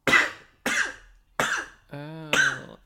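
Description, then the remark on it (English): Four sharp, stifled sneezes that come out like coughs, moderately loud, spaced about half a second apart, with a brief voiced groan before the last burst. “Oh my god, it sounds like a cough.”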